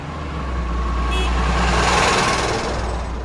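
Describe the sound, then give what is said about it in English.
Road repaving work with heavy trucks, fixing a road worn with potholes: a steady, loud diesel engine rumble, swelling slightly midway, with a brief high-pitched beep cutting through near the start. “They're repaving the road.”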